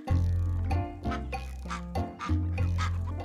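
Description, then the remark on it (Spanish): Ducks and geese quack loudly and close by, a steady run of nasal, overlapping calls with brief dips between bursts and no talking. “También teníamos que saber cuáles peces podíamos pescar y cuáles no, y cuándo era la temporada para criar gansos y patos.”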